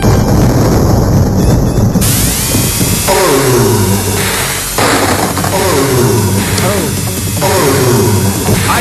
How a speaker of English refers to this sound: Fake chainsaw sawing mm-hmm. buzzsaw noises. Yeah, that is Biggie Man, the giant boss with the bag on his head and the chainsaws for hands.